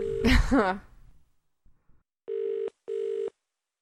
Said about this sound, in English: Oh, it's ringing. Good.